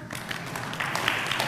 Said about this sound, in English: Oh, y'all suck at clapping. No, it's too late. It's too late.